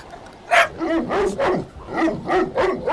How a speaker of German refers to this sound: Oh mein Gott, was ist denn das? Ein riesiger Hund!